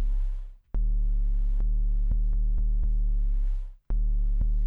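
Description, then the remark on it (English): A loud, buzzy synth tone holds a steady pitch, thick with harmonics and distortion, briefly cutting out twice and clicking at several points along the way. “So it just has a pitch. And it's got some a little bit of noise or whatever. Boatload of distortion on it.”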